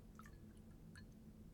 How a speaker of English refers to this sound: I'm going to pour some more of this beer. I like this. This is absolutely what I wanted tonight.